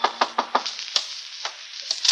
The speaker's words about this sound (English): Well, this was my chance to collar him, only just then a knock came.